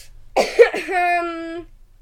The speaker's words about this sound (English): You just make a lot of noises right now. Can I not cough?